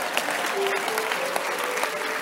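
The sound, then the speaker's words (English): An audience claps steadily, dense overlapping hand claps forming a continuous wash of applause at moderate loudness, with faint sustained tones underneath. “All of you are clapping.”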